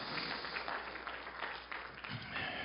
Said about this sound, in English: Give him a good hand clap of praise. Hallelujah.